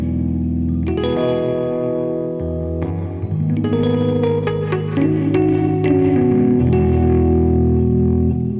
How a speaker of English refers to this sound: Let me hear your Rhodes clean, and then let me hear it with that Greer pedal, out of curiosity. So this is just nothing on. Well, okay. Except for the reverb.